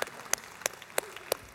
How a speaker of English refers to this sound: But give yourself an applause. That's 15 verses.